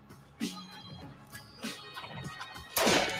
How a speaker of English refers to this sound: Was that a gunshot? Yeah, they shot the dealer.